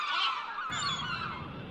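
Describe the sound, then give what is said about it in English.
A flock of geese honks loudly and continuously, many overlapping calls, with a deeper rumbling wash of noise joining in partway through, as U.S. Airways Flight 1549 strikes the flock shortly after takeoff from LaGuardia Airport on January 15, 2009. “U.S. Airways Flight 1549 strikes a flock of birds shortly after takeoff, losing all engine power.”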